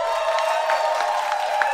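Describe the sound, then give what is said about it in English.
An audience, asked to applaud if they have seen Benanti on Broadway, breaks into steady, dense applause, a sustained wash of clapping with a few brighter bursts of cheering mixed in, fairly loud throughout and with no one speaking. “Now, applaud if you've seen her on Broadway.”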